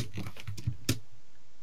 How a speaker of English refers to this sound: Can you stop typing? It's worse than my keyboard. All I can hear is... That's not me. It is. Bro. Do you like it? I'm editing something.